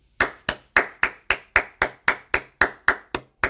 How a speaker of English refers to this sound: Let's clap